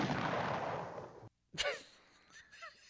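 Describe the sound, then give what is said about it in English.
A loud, roaring explosion rumbles for about a second, cuts off abruptly, then a sharp second blast bursts out and trails away into fainter crackling and whistling tones. “Now, don't tell me that's not an explosion, okay? I mean, that's an explosion, right?”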